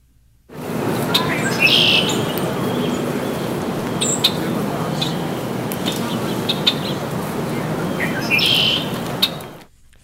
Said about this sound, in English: In the meantime, let's replay those 9 seconds of the red-winged black bird, harbinger of spring in the New York area.